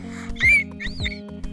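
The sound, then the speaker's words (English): A person makes two high, squeaky whistling calls in quick succession, imitating a dolphin, each rising and falling in pitch, loud, with no other talking. “Can you make it sound like Nova did? Remember when she did it real loud”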